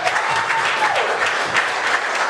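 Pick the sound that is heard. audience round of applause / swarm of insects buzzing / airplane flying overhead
audience round of applause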